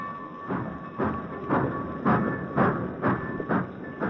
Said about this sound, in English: Britt watched as his father's train moved out of the station.